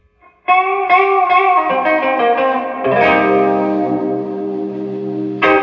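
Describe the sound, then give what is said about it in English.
Sustained chords ring out from an electric guitar through a Champion amplifier with the gain at five and the reverb maxed out at 10, drenched in lush, washy reverb that smears each strum into a shimmering tail; loud, with no talking. “And the reverb's maxed out at 10, right? Let's bring it back to like seven.”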